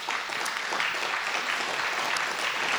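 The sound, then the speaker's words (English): A church audience claps steadily and enthusiastically for the worship team in the morning, a dense, continuous wash of applause from many hands at an even, fairly loud level with no talking over it. “Let's give them a big hand this morning.”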